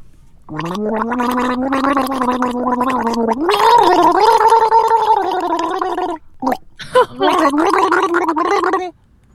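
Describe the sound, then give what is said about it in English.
Someone gargles Awkwafina water while gargling out a song for listeners to guess, in a long, continuous burble, with the voiced pitch rising partway through, then breaks off briefly before gargling again in shorter bursts. “I am drinking Awkwafina water for this. So I don't know how that'll affect the sound waves emitted from my”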